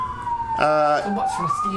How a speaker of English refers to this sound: The ambulances are coming.